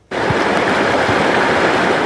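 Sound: rushing floodwater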